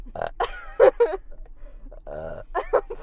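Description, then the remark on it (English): A series of throaty vocal bursts like burping or choking, several short gulps and croaks over a few seconds with one longer, low rumbling belch in the middle. “I mean, I'm choking or burping.”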